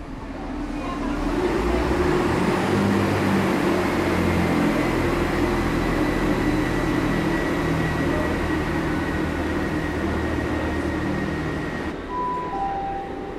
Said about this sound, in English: So there goes the train, light enough to take the route that we should have been taking today.